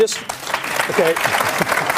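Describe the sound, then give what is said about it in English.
A TV studio audience breaks into steady applause, a 'Q&A clap', a dense, even wash of many hands clapping that holds at a fairly loud level for about two seconds, with a faint voice briefly rising above it. “So this is a Q&A clap.”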